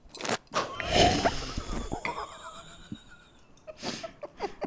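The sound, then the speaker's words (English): Close-up glass clinking, with a bright ringing tone that lingers and fades over a couple of seconds, followed by short, wet slurping sips right near the microphone. “let's do a clink. We'll use your microphone. Okay. And then a sip in our own microphones.”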